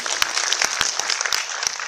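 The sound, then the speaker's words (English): An audience at a 9 a.m. event applauds the organizers steadily, a dense wash of many hands clapping at once with scattered sharper claps standing out, sustained without any talking over it. “A big round of applause to the organizers for putting this together and getting you all here by 9 o'clock in the morning.”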